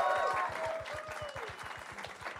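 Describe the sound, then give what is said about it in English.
An audience applauds and cheers as the next guest is introduced at a live show, a dense, continuous wash of clapping with a few high whoops and a steady, quick low thumping pulse running underneath throughout. “Keep clapping!”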